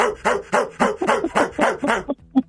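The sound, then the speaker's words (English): A person barks like a dog, about eight loud, rhythmic woofs in quick succession, ending with a short high yelp after a brief pause. “And this makes sense as the section of seats behind the east end goalpost is known as the blank pound. Dog pound.”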